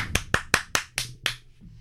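hands clapping

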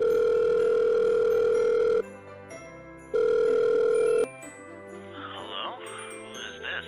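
phone call ringing out

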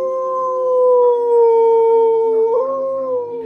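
dog howling

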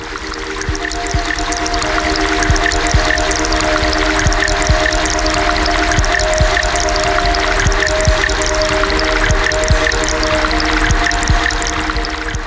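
rushing river water

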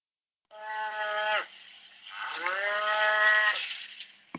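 cows mooing

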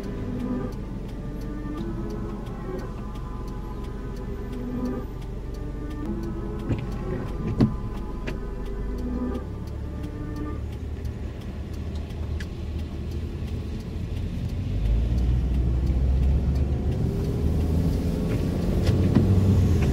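car interior

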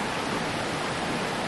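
river water flowing

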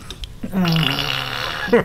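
wet fart

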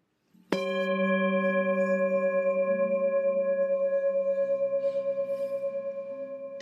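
meditation chime ringing

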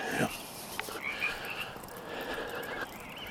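frogs croaking

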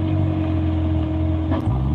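car engine revving

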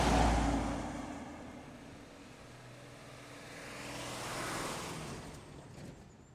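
road traffic

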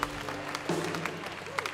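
audience clapping in praise

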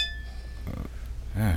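drinking glasses clinking together

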